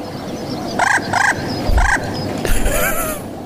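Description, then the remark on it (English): A messenger pigeon calls three times in short, evenly spaced bursts with a bright, reedy tone, then gives a longer wavering, warbling note over a soft rumbling background. “It took me a long time to find a messenger pigeon.”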